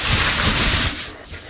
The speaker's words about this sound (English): Listen to my zipper. Listen. I'm gonna open my zipper. I want you to hear my zipper. Listen.